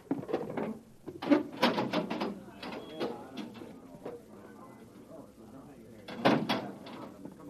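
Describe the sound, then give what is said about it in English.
A heavy manhole access door leading down to a northbound road grinds open with clanking, scraping metal, loud rattling bursts early on, a quieter rumbling stretch in the middle, and another hard clatter near the end. “Now stand away from the door”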